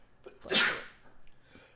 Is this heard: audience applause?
no